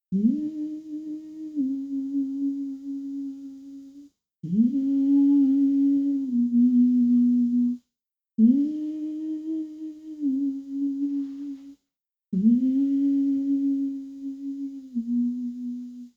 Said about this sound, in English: And the murmurio is done. We breathe in our nose and we make a humming sound with our mouth closed. And it goes like this.